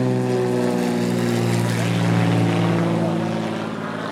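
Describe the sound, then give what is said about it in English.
A steady, droning propeller engine hums loudly and continuously, its layered tones holding level before easing slightly near the end, as an airplane with flashing, blinking colored lights flies overhead during a night air show at Oshkosh. “An airplane with all kinds of different colored lights flashing and blinking”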